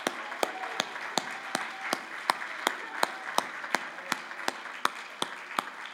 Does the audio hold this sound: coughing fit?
no